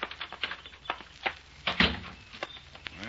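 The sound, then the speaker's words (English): The lobby door at the end of the porch of the Lakeside Inn opens and shuts amid a run of small rattling clicks, with one heavier thud near the middle. No one speaks. “That looks like the door to the lobby down there at the end of the porch.”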